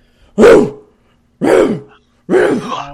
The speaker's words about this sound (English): That sounds like a sick dog.